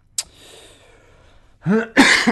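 A sharp catch of breath, a pause, then two harsh, throaty coughs in close succession, loud and near, with no talking around them.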